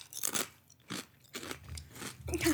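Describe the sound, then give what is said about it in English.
Loud crunching of a bubbly, relatively thin potato chip being bitten and chewed, several sharp crackly bursts in an irregular rhythm with no talking. “There are some nice bubbles in mine. I got a boublage for sure. I love that because that adds to the crunch.”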